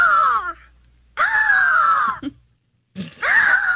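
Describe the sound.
Three drawn-out, wailing eagle calls imitated by a human voice and recorded in a studio, each a loud, strained, high-pitched cry sliding slightly downward, separated by short silences with a brief grunt between the second and third.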